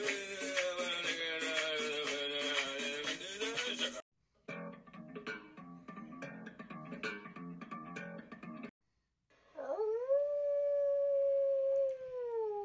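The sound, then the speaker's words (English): A human voice imitates a dog or wolf howl: one long, loud tone that swoops upward, then holds and slowly sinks, following several seconds of dense, choppy sounds. “That's not even a dog. Was that a wolf or a dog? No. Sounded like a human.”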